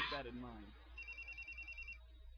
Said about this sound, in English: Excuse me. Damn, all spoiled by the phone.